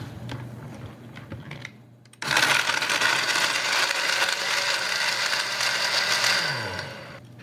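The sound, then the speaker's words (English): After a quiet low hum, a loud, steady mechanical whir kicks in abruptly and runs for about five seconds, whipping up a frothy drink of milk, meringue powder, powdered sugar and vanilla, then its pitch sags as it winds down. “And when I whip this up, the meringue powder is gonna give it this wonderful frothy texture.”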